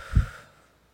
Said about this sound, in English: Can we take a deep breath together? In through your nose, out through your mouth.